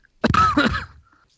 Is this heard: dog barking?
no